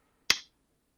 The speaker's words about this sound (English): Yeah, I clapped.